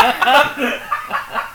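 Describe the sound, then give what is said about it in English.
A door creaks in a series of short, wavering squeaks, moderately loud, with a rising and falling pitch that sounds almost like a voice or a clucking bird. “That was an allegedly from the door.”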